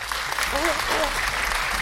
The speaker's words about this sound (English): Back to my boy, Marcus Morris. Welcome to the Knicks. Congrats. I'm very... Hold on, let me give him a clap.